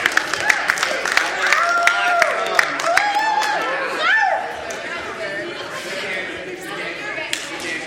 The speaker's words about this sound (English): Clap if you had fun.